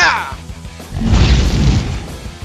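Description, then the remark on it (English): A single loud energy blast explosion from an attack called Pulsar Blast erupts after a brief low electronic hum, then a booming, rumbling roar sustains and slowly fades without cutting off. “Pulsar Blast! It burns!”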